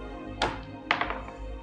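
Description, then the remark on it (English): A d20 die clatters onto a table: one sharp clack, then a second louder hit followed by a brief rattling tumble as it settles. No one speaks. “Roll a d20.”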